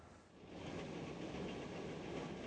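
A train rumbles along with a steady, dense roar that swells after a brief moment and stays loud throughout, with no voices present.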